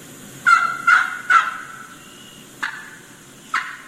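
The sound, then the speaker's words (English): A wild turkey hen gives questioning yelps: three quick, evenly spaced yelps, then two more spaced farther apart, clear against a quiet outdoor background with no talking. “They're questioning yelps. Let's take a listen what that sounds like.”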